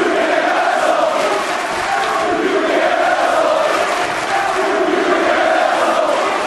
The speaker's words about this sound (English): I'll tell you what, the crowd here, these WWE crowd chanting, you can't wrestle.